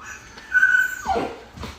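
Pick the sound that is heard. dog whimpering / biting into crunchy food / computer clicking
dog whimpering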